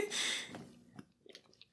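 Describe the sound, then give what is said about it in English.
Someone gulps down alcohol: a short breathy slurp, then a few quiet, wet swallowing clicks spaced out over the next second, with no talking. “…'s in there sipping on alcohol. He looking malicious while he does it. Oh, he's going down it.”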